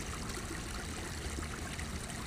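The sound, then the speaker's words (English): A little babbling brook flows steadily, its water burbling and trickling in a continuous, even wash of sound, with no voices or other noises. “I think I'm going to come back and see you another time, little brook.”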